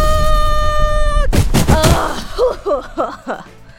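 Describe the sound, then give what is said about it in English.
A steady, piercing harmonic whine holds for about a second, then breaks into loud, rough crashing bursts as Donna Kablooey's sonic blast knocks Swift through a wall onto the ground outside, followed by a few short groaning vocal sounds. “Donna Kablooey sends a sonic blast towards Swift, which knocks him through the wall onto the ground outside.”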